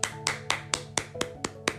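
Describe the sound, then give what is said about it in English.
Someone claps their hands eight times in a quick, steady rhythm to celebrate 400-something views on their website, each clap a sharp, bright smack, with a faint low hum underneath and no talking. “So with that, I have 400 and something views on my site. and I want to clap it up for that.”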